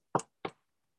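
Two quick, close knocks on a wooden surface, spaced about a third of a second apart, each sharp and brief, followed by silence.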